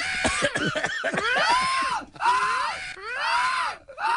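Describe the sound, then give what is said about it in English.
A person imitates the hawk call from the film Beastmaster with strained, inhaled cough-like shrieks: a rapid rough burst, then three drawn-out arching screeches, loud, with no talking. “And the way he would call his hawk. No. He would breathe in. What? He would breathe in. But he would cough.”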